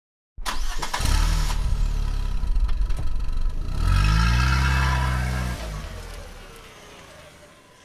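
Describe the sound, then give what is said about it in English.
A car engine cranks and catches, idles with a low rumble, then revs up and pulls away as parents drive back home with their child, the sound fading as the vehicle drives off. “And after Amu and Mukul Kaka finished their dinner, Amu's parents came back from the movie to pick her up and they drove back home in their car.”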